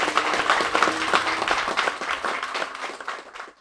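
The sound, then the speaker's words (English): A crowd breaks into sustained applause at the reveal of the new Aston Martin Valor at Goodwood, a dense wash of overlapping hand claps at steady loudness that continues for a few seconds before fading out at the end. “Okay, so that's what the reveal of a new car at Goodwood sounds a little bit like.”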